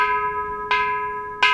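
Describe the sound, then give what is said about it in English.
A large Buddhist temple bell, the Kansho, is struck with a wooden mallet three times in steady succession at the Buddhist Temple of Chicago in Uptown to announce the start of Sunday morning service, each dull thud feeding a sustained, humming ring that lingers between strikes. No voices. “For the third example of people-powered bells, I went to the Buddhist Temple of Chicago in Uptown, where every Sunday morning, they ring a bell called the Kansho to announce the beginning of service.”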